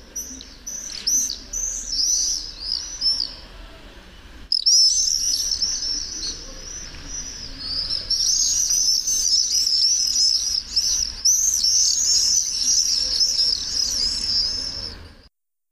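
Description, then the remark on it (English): Common swifts screaming, a dense, continuous stream of shrill, buzzy high-pitched calls from several birds. A brief lull near the middle gives way to an even louder, sustained chorus, with no talking. “But I'll leave you with that last playing again of the common swift.”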